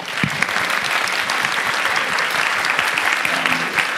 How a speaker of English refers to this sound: I really, truly want to thank everyone, especially the JCC, if we can give them a really quick round of applause.